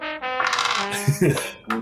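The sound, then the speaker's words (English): Dice received as a Christmas gift rattle and clatter across a hard tabletop in a quick burst of sharp clicks that settle after a couple of seconds, with faint voices in the background. “My Christmas dice are treating me well.”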